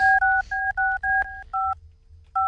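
A rapid run of about seven touch-tone beeps as the cell phone number of Tim Shadbolt, mayor of Invercargill, is dialed, each short dual-pitched tone separated by brief gaps, clear, followed by a pause and one more tone.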